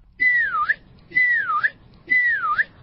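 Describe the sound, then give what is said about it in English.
A child whistles three clear bird-like phrases in steady succession, each a sliding tone that dips and then flicks upward, with short pauses between and no talking. “Let's try whistling. Can you whistle”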